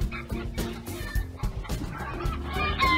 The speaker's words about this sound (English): There's one. See how upset you made everyone? There's two. That's two of our new chickens.